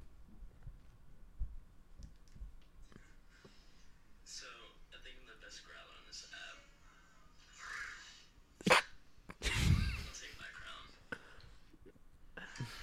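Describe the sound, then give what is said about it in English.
A person makes a short, rough growling sound, one loud gravelly burst near the end, after a stretch of quiet whispery voices and small clicks. “Best growl. Here we go.”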